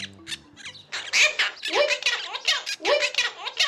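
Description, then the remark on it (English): A monk parakeet, or Argentine parrot, mimics human speech, saying "I love you so much" in Spanish as a quick run of raspy, squawky syllables in a short phrase, with a faint chirp before it. “This bird is saying, "I love you so much," in Spanish. It's the monk parakeet or Argentine parrot.”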